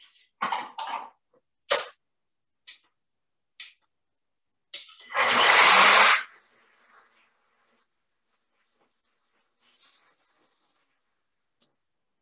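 A Ninja blender roars loudly for about a second and a half, mixing butter and oil into coffee, after several sharp clacks and knocks. A few faint clicks follow. No one speaks.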